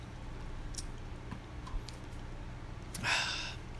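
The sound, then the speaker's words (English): A few faint ticks and clicks over a low steady hum, then one short airy slurp as someone sips a soda, with no talking. “I'm going to take a sip of soda real quick.”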